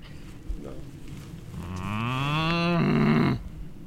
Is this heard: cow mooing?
yes